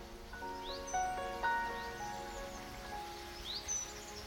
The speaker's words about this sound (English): Oh, and listen, can you hear the sound of the Sugarloaf Creek? That gentle ripple of the water.